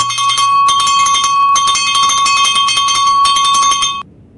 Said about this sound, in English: That was the cowbell to signal the signing. Better late than never.